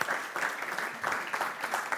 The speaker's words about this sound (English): Come on now. Can we have another round of applause for mums?